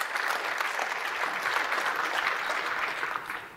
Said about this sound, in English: Clap for that one.